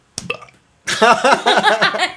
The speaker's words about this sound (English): You just slapped the shit out of me. I burped. Ew, you didn't cover your mouth. No, because you slapped me. I didn't know I was going to burp.